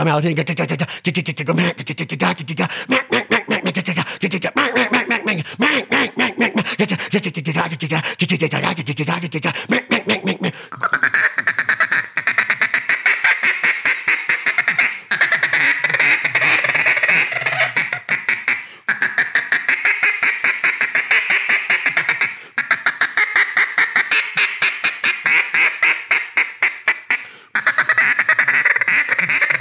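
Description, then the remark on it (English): A person imitates a mallard duck, most likely with a duck call, producing rapid, raspy quacks in long continuous runs with brief pauses, loud and nasal throughout. “Emulate a mallard duck.”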